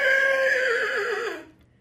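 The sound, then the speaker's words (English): A girl of about 15 imitates a horse whinny with her voice: one loud, quavering cry that wavers and slides downward for over a second before cutting off, with no talking. “This is a human being sounding like a horse.”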